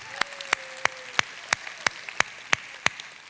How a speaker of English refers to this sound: Can y'all wave at him and give him a big clap?